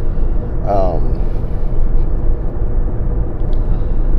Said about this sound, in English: So, as you can hear, I'm in my car.